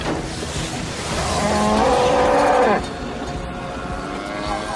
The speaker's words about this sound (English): Another cow. Actually, I think that was the same one.